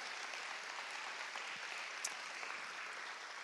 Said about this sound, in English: Let's clap our hands to the Lord for that.